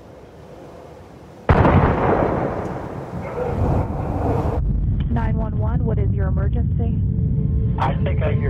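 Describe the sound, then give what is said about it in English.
A sudden, loud gunshot bang cracks out in a hallway and rings with a reverberant echo, followed by a sustained noisy wash with raised, shouting voices. “It sounds like there are gunshots in the hallway.”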